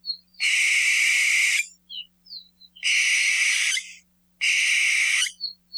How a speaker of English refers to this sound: Barn owls are also very vocally active at night and make a number of very distinctive calls